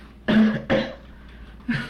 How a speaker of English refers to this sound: I just coughed some up for you.